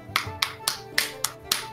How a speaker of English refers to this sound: I'm gonna look down and kind of smile at everybody, and try to encourage them to applaud. First of all, do they? Oh, okay. I'll applaud. I will.